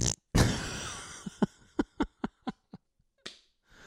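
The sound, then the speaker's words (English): A loud, raspy fart noise from a crab in the sand blares, then breaks into a stuttering run of about eight short sputtering pops and a last brief puff. No one talks. “It's that farting crab.”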